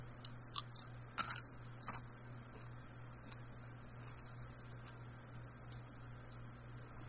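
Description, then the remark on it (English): Close-up crunching of M&M's fudge brownie chocolate candy, a few sharp crackling bites early on, then quieter chewing over a low steady hum, with no talking. “But the M&M's fudge brownie one, so I'll get my mouth as close as humanly possible so you can hear the crunch.”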